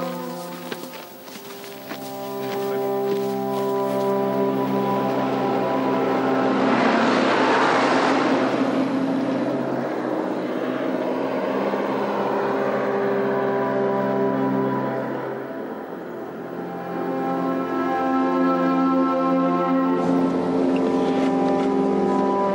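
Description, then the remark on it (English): A truck engine rumbles steadily as the truck drives, a loud droning hum with a rougher surge partway through that settles again toward the end. No one speaks. “I don't think I can take another hour in this truck.”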